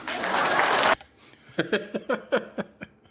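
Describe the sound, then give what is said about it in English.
A second of dense, hissy crowd noise cuts off abruptly, then about seven scattered, uneven claps follow from a small audience, hesitant and sparse with gaps between them, at a Jeb Bush presidential campaign event after he asks the audience to clap. “Please clap.”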